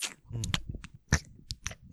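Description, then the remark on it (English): Wet ASMR gum chewing with irregular smacks and clicky snaps roughly every quarter second, one sharper pop near the middle, and no voices. “It'll just be chewing gum and whispering and chewing gum.”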